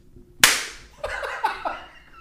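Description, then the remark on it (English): A single sharp, loud hand slap cracks, reenacting a slap, followed by a few short, breathy vocal bursts that sound like laughter. “Because I don't slap my kids.”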